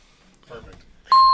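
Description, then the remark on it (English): A moment of muffled talk, then a loud, steady, high-pitched censor beep cuts in abruptly and holds as a single unbroken tone to the end. “Now, do you edit appropriately or you just put like beeps in?”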